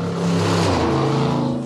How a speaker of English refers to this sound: Muscle cars. They take over your life just for a moment, and then all of a sudden they leave.